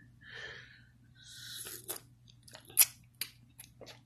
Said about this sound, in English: Hold on, let me sip some of this delicious chocolate flavored coffee.